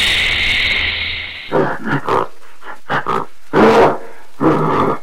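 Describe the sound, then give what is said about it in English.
A steady hiss of rain and jungle ambience gives way to a series of rough, layered animal roars and growls, coming in several loud, irregular bursts separated by short gaps. “And here's how the sound overlaid over the top of the rain and the general jungle ambience.”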